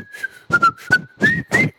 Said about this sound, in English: Here's let me do my whistle real quick here.